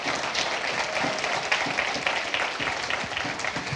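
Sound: audience hand clapping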